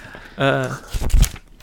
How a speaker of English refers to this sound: I'm gonna just get a pen and paper and make sure that I do it right. Sorry, that's 14. The sound of paper rattling around.